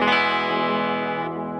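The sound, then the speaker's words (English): A sustained guitar chord rings out through a Quiet Theory Prelude pedal with both its reverb and delay sides switched on. It makes a soft ambient wash that stays subtle rather than overwhelming, steady and fairly loud with no voices. “Like, the effect is pretty subtle. You know what I'm saying? Like, it's not a super overbearing delay or reverb, I would say.”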